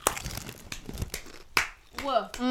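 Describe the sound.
A plastic snack packet crinkles and crackles in a run of irregular, sharp bursts, followed by a voice starting to speak at the end.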